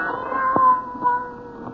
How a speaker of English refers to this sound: Then the silence was broken by the faint crying of one cat. The crying grew louder and louder.